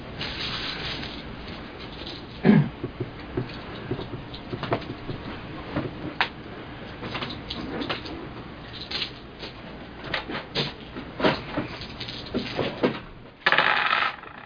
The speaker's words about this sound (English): So go ahead and roll your 2 dice and see if you can get 3 successes.